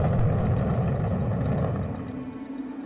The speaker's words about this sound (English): On July 20th, 1969, man went to the moon. 2, 1, 0, all engines running.